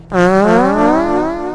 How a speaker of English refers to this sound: Editor's note. Put in a fart sound. Phallic. Fart noises. Echoing fart noises.